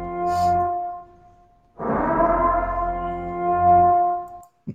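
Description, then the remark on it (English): A bird sound effect from the movie The Bird, of sustained, buzzing electronic tones that swell into a harsh, rasping screech midway, then hold a steady droning pitch before cutting off abruptly. “that's the bird sound, buddy.”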